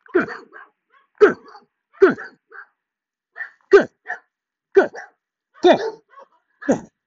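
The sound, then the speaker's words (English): A dog barks repeatedly, about eight sharp, loud barks at a steady pace roughly once per second, with no other sounds around them. “The same dog as yesterday.”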